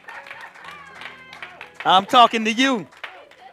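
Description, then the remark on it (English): Scattered clapping from an audience, light and uneven, runs beneath a loud, drawn-out vocal exclamation that rises and falls in the middle before fading back to soft claps. “Oh, y'all clapping, some of y'all.”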